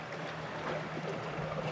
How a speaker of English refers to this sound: So to imagine sitting on a wharf, watching this play that takes place at sea, and just hearing this. The waves around you. Yeah. That'd be nice.